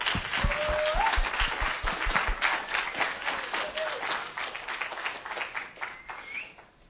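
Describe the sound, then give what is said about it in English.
A church crowd stands and applauds steadily as a man comes up to preach for the very first time, dense clapping from many hands that holds loud for several seconds before gradually thinning and fading, with a few faint whistles rising over it. “As he comes up, we all stand and give him a round of applause.”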